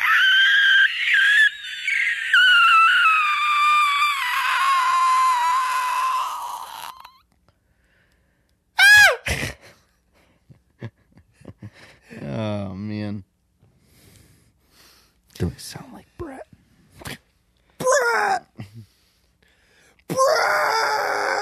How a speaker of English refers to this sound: If it ends in terror, I'll just add some screaming. Okay, perfect. Yeah. Bloody murder. That works.